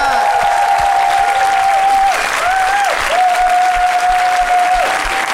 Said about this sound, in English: Can we give a huge round of applause to our guest